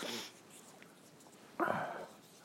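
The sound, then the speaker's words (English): A voice imitates a cough: a brief breathy burst, then a louder, raspy, wheezing hack that trails off after about half a second. It stands alone, with no talking. “Coughing. Jesus, that's torture.”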